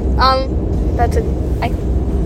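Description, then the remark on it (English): Steady, loud low rumble of a car interior while driving into Bakersfield, with a few brief, indistinct voice sounds rising over the road noise. “We've been sitting in the car while it's moved for a lot.”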